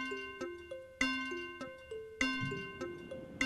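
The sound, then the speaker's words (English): A ticking countdown-clock cue timing 15 seconds for a quiz answer: crisp, evenly spaced plucked notes tapping out a steady beat and stepping up and down in pitch, loud, with no voices. “15 seconds on the clock.”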